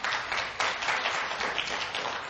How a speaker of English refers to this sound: You can applaud.